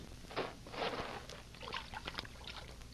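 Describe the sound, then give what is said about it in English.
Water in a water hole splashes and sloshes in a few quick bursts as a man tests it, with soft trickling and dripping between them; no voices are heard. “I'm going to test the water.”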